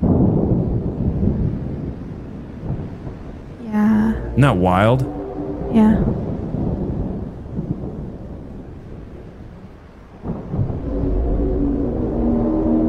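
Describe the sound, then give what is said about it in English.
Deep rolling thunder rumbles through a steady stormy wash of low noise during a thunderstorm with flashing lightning in Dubai, while people speak briefly over it in the middle and again near the end. “I can see it when the lightning comes. Yeah, every time the lightning flashes.”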